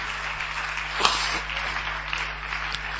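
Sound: audience clapping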